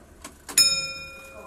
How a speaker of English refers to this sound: She's now getting ready to chime. But just at about 2 minutes before the hour, click. She's now, the escapement has moved into position. She's ready to chime. She'll come on to 2 o'clock.